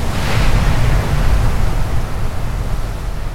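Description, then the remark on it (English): A steady, powerful roar of rushing water and spray as the Old Faithful geyser erupts, blasting water skyward, with a deep rumble underneath and a hissing wash on top, continuous. “The pressure builds up until the water is forced to the surface, and then it erupts into the sky.”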